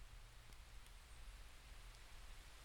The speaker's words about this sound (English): I'm recording this now from my hotel room this evening, and in the background, we're going to pull in the sound of the rain that I recorded this morning on the trail. I hope you like it.